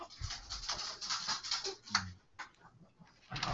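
An excited dog being given treats scrabbles and snuffles, with busy scratchy pattering and a few soft thumps over a few seconds, no one speaking.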